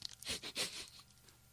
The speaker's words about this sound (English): Okay, he's still chewing, folks, and savoring, which is, as I said, I think it's a good sign.